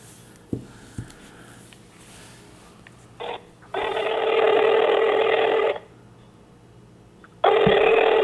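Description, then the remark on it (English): A phone call being placed: a few faint taps and a short beep, then a loud telephone ring lasting about two seconds, a pause, and the ring starting again. No one speaks. “Let's call it. Let's call it right now. Hold on. Here is the number, and let me”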